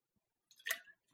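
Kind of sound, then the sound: human body sound, drinking water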